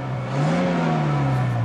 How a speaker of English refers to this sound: Now he's just revving the car without putting it into drive.